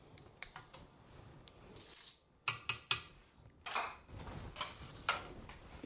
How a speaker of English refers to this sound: First, the pineapple, which hopefully now is mostly out of juice. I'm giving it one more good squish against the back of the mesh sieve thing, and that goes in.